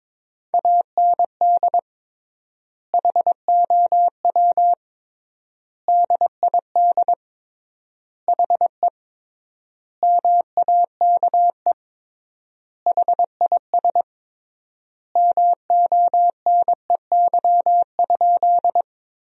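Morse code practice at about 22 words per minute, sending sentences built from the 400 most common words with tripled word spacing: a steady mid-pitched tone keyed into quick dots and dashes, grouped into words separated by long silent gaps. No voices, just the clean beeping.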